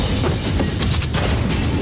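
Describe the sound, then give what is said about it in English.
Fireworks from the 2011 film Attack the Block exploding in a dense, continuous wash of noisy crackle, with several sharper bangs punching through at irregular intervals. Loud throughout, with no voices. “Lovely fireworks.”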